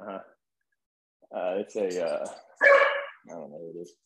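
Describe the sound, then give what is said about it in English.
A dog barks in a short series of loud, rough, drawn-out bursts, with a brief pause after the first and the rest coming close together. “I'll get my dog fucked up.”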